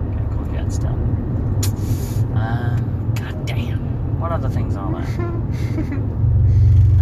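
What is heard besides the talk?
road traffic passing by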